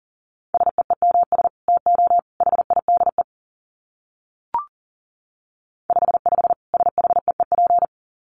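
Rapid Morse code beeps at 40 words per minute in a single steady mid-pitched tone, sent in two runs of quick dits and dahs, separated by a pause broken only by a brief click.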